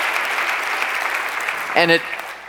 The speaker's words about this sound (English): Would you join me in giving God a clap offering of praise for what he has done in Petruța's life?